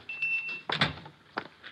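A door opens: a thin squeaky whine, then a heavy wooden thud and a second sharp knock as it settles. No voices.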